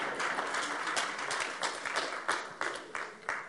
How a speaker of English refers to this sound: You clap my singing. You clap my singing, but you've never clapped my speaking.